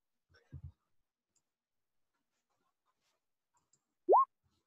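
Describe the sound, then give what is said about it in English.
Dice clatter briefly near the start, a couple of quick, muted knocks on a surface. After a quiet pause, a single rising vocal whoop follows. “You don't play with another man's dice.”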